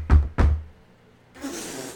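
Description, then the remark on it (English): Two heavy, booming, loud knocks on a door in quick succession, followed by a soft rustling hiss as something shifts. “All right, I'll go check the door.”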